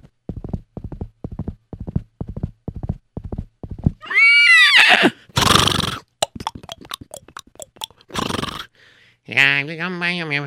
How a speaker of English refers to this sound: And all right, giddy up. And the horses began to gallop.